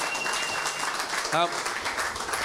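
A steady round of applause for Kane from an audience in the room, dense and even throughout, with a brief vocal whoop or cheer rising above the clapping partway through.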